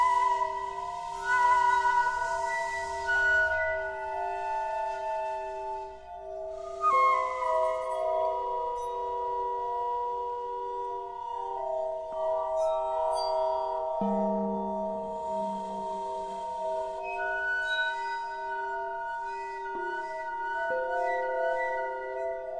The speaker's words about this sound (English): a Canadian group that plays glass, broken glass and glasses and kind of scraping, literally as you might with a wine glass, your finger, and they play all these kind of elements of glass mixed with orchestra.